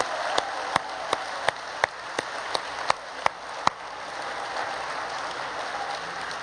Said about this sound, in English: So I want all the dads and granddads to stand up right now. We're going to start with recognition. Come on, stand up. Get your applause. We're glad for you.